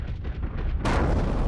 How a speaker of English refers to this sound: Oh, wow. Nice explosion